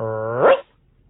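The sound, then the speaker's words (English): A single loud dog bark, drawn out and rising slightly in pitch before cutting off sharply, followed by near silence. “And if you listen to your canine friend, I'll send you into the weekend with a couple picks that'll be easy to defend.”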